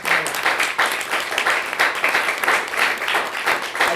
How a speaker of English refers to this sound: I just want to close, not to talk over the clapping, but I just want to close with the words, ironically, of a man, and that's how we'll close this podcast.